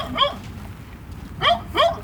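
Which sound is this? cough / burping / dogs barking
dogs barking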